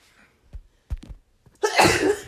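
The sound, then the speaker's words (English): A few short catching breaths lead into one loud, explosive sneeze that bursts out and trails off, with no talking. “You sneezing? You okay?”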